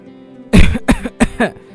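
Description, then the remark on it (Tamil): A series of three harsh coughs in quick succession, the first strongest, each a sharp burst with a brief rasping tail and short pauses between. “இல்லை இல்லை, இருமல் தான்.”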